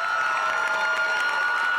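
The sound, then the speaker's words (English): A large crowd at Cape Cod's Nauset Regional High School cheers and applauds continuously as a pop singer is brought to the stage, a dense, steady roar of clapping and voices. No one speaks clearly over it. “So what do you say we get up on our feet and give a rousing cheer as we bring”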